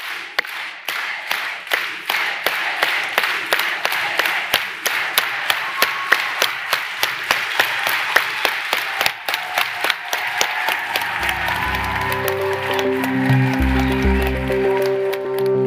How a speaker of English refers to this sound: So let's put our hands together and do a unity clap. Let's go. Si se puede.